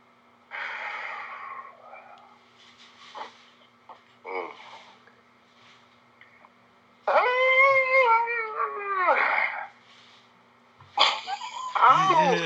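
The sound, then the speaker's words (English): A cat lets out a loud, drawn-out meow with a rising and falling whine, followed moments later by another shorter cry, with scattered softer noises and murmuring in between. “What's that? Hey, you got a cat?”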